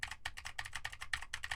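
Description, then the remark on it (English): Rapid, steady typing on a mechanical keyboard with Cherry MX Blue switches, with crisp, clicky keystrokes in quick bursts and no voices present. “Now I am typing on a keyboard with Cherry MX Blues to see how much of my voice versus how much of the keyboard it picks up.”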